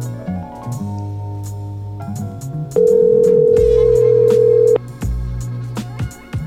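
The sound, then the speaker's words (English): An outgoing phone call rings unanswered: one steady, fairly loud ringback tone of about two seconds sounds over quieter background music, then cuts off. “That's the first time nobody picked up.”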